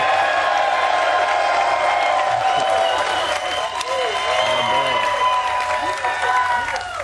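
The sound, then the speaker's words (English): A crowd breaks into sustained applause with cheering and whoops mixed in, a dense steady wash of clapping that holds loud for several seconds, for Seattle Seahawks safety Quandre Diggs. “So without further ado, can y'all clap for Quandre Diggs, please?”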